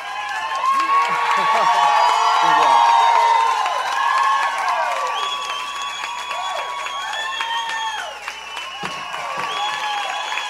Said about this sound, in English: here is a sterling recording of one of the songs he did that night in front of an adoring and packed-in crowd.